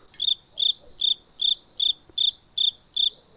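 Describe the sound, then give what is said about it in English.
A cricket chirps steadily, about eight evenly spaced high-pitched trills in a row, clear against an otherwise quiet background with no voices. “Cricket, cricket. Awkward silence.”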